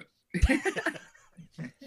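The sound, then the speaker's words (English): A single burp with a low, throaty onset, followed by soft laughter and a few breathy chuckles that trail off. “I'm usually the one burping, so that's fine.”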